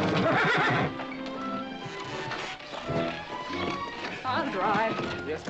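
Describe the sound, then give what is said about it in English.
A horse whinnies loudly, its wavering neighs rising near the end, while hooves clop steadily and voices mingle in the background. “have him on the horse.”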